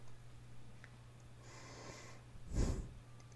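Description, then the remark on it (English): A soft, breathy yawn: a drawn-out airy inhale, then a brief, fuller puff of breath that swells and fades, over a faint steady low hum with no talking. “Got a little yawn there.”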